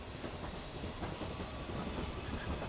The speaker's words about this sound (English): so the train going past into London. There's a few more smattering of people on there, socially distanced. So at that moment, there's enough space on the trains to still be socially distanced.